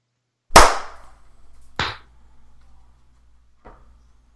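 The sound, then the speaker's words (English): Three sharp hand claps made for audio synchronization at the start of a show recording, with uneven gaps between them: the first is loud and crisp, the second a little softer, the last faint. A brief ring trails each one, and no one speaks. “The clap is supposed to be then we start the show. It's for synchronization.”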